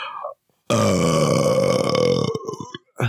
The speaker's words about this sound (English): That was an on-mic death metal burp, by the way. It's different than a regular on-mic burp.